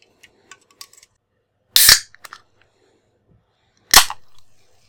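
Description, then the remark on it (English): Two sharp, loud cracks of a Coca-Cola can's pull tab snapping open, each followed by a short bright fizzing hiss, with faint small clicks and taps from handling the can beforehand. “While you do that, I'll have a can of Coca-Cola.”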